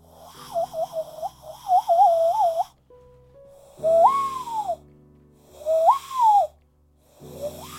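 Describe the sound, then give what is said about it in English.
A person makes hooting noises, a warbling run of breathy hoots followed by two longer rising-and-falling hoots, fairly loud and mid-pitched, with brief silences between and no talking. “A hooting noise.”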